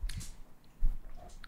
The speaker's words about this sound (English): You hear us chomping on grapes? Like for sure? Yeah. I was trying to munch quietly. I'm sorry, guys.